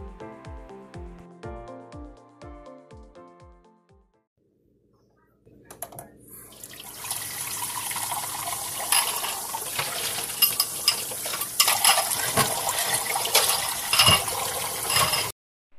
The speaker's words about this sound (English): You are using too much water. Close the faucet while you are still washing the dishes. But Mama, I like to use more water in washing the dishes.